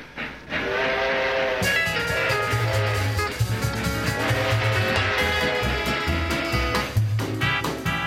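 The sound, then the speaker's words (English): A passenger express train, the 20th Century Limited making its daily run between New York and Chicago in 1949, rumbles steadily along with a low rhythmic clatter while a loud, sustained whistle sounds over it, with a second whistle blast near the end. No one speaks. “If you were looking to ride in style in 1949, you couldn't do better than the swanky 20th century limited express train that made a daily run between New York and Chicago.”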